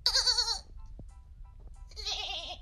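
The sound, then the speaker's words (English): A person imitates a goat with two wavering, nasal bleats, a short one at the start and another after a brief pause, fairly loud, with no talking. “That was me that time.”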